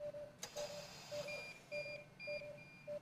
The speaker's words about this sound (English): Now it's starting to show alarm because I'm maxing out on my... On your RPMs. Right. So let's go ahead and silence the alarm so we don't have to go crazy.